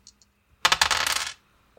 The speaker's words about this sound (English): Are we rolling dice? We're rolling dice. Yes, go ahead.